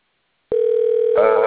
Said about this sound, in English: Are you guys hearing the phone call?